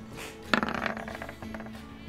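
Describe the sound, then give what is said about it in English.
Dice clatter onto a hard surface with a sharp first impact, then quick rattling bounces that tumble and fade, followed by a smaller second clatter. Fairly loud, with no talking. “Go ahead and roll again.”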